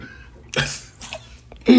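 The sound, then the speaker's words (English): A couple of weak, breathy coughs sound in the background, two short bursts about half a second apart, followed by a brief voiced sound at the end. “That weak ass cough y'all hear in the background”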